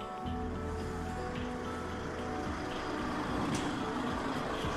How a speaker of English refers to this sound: Oh, sounds like a truck! My God! Here comes.